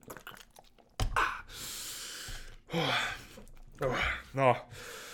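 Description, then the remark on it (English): Mouth sounds of someone sipping water: a slurp, a couple of wet gulps and swallows, then breathy exhales, all heard alone with no talking. “Let me take a quick sip here.”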